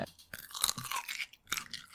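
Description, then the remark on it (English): Wet crunching as someone bites into a pickled gherkin, a few loud snapping bursts followed by chewing, with no talking. “That's crunchy. Mm. Crunchy gherkin, not a pickle.”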